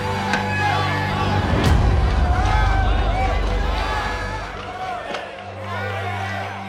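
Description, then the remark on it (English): A courtroom crowd erupts in excitement at the not-guilty verdict for Eadweard Muybridge, many voices shouting and talking over one another in a loud, dense roar that holds steady for several seconds over a low steady hum. “The crowd went wild.”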